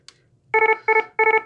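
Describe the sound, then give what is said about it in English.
A medical alarm's attention-grabbing tone, used to announce an alarm for a problem related to a patient's medication: three loud, bright electronic bursts in a steady rhythm, each a cluster of quick harmonic pulses, preceded by a brief faint click. “What you might do is you would announce an alarm by using something like this.”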